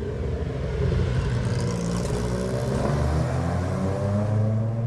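A classic sports car engine revs hard, its deep throaty tone climbing in pitch as it roars steadily past, loud and continuous for several seconds with no voices.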